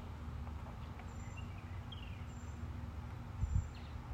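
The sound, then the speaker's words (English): A few faint bird chirps over a steady low outdoor rumble, with thin high tweets recurring every second or so and no one speaking. “It's so beautiful outside. The birds are birding.”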